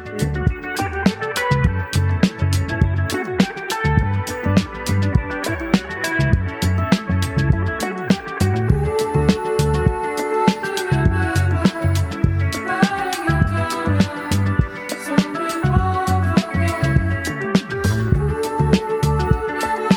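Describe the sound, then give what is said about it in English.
A country western song by an American trio from Texas plays at a steady, lively tempo, with a driving beat and twangy, bright instrumental melody lines layered over bass, loud and continuous throughout with no talking over it. “And this is a trio, American trio from Texas.”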